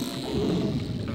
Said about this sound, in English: I think I hear a narwhal. Narwhals are whales who live in the Arctic.